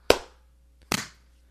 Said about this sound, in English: 1, 2, 3 clap. 1, 2, 3.